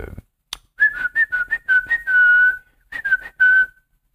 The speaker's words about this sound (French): Ouais, parce qu'ils ne comprennent pas le sifflement.